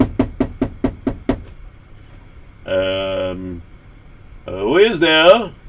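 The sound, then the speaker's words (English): A quick run of about seven sharp, evenly spaced, distinct knocks on the door of the rabbi Marcus Lehman, followed after a pause by two short bursts of a voice. “So one day, somebody came knocking on his door.”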